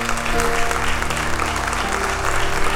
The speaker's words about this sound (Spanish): Vamos a darle un aplauso a Jesucristo esta noche.